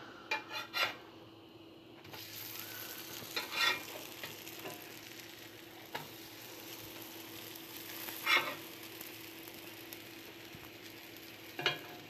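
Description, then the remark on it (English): Chocolate chip pancake batter sizzles steadily in a skillet, a constant hiss broken by a few sharp clinks and scrapes of a utensil against the pan. No one speaks. “It's time for the sizzle.”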